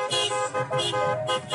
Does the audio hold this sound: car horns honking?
yes